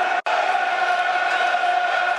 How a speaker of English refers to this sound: Nice atmosphere inside the ground. The crowd are enjoying this game.